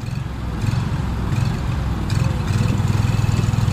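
The motor of a small flat-bottomed paddle boat with two men on board chugs steadily, a rough low drone with a rapid pulsing rhythm, as it moves through a green, muddy rice-planted trench on a 120-acre crawfish farm in Scott, western Louisiana.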